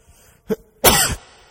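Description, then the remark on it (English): A single loud sneeze into a microphone: a short sharp intake, then an explosive, hissy burst lasting about a third of a second, with no talking around it. “I haven't figured out how to sneeze without it becoming really loud in the microphone.”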